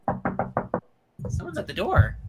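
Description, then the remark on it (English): Five quick, firm knocks on a door in a steady rhythm, fairly loud, followed after a short pause by people talking. “Someone's at the door.”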